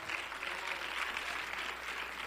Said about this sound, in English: Oh, clap your hands and let's worship the Lord together.